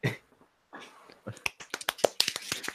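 A quick burst of sharp hand claps for the season's second runner-up, a dozen or so in an uneven, speeding rhythm, following a brief muffled noise and a moment of near silence.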